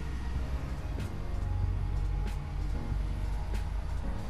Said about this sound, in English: Wow, the traffic is really loud today. Please be patient with me. It's a Saturday, so there are many people out and about.